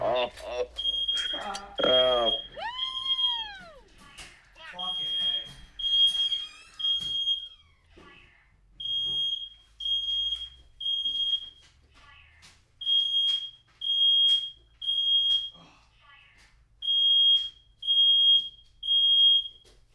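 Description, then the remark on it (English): The speaker's smoke alarm goes off, beeping loudly in repeating bursts of three shrill tones, continuing steadily after a brief stretch of voices and clatter at the start. “Hold on, my fire alarm went off.”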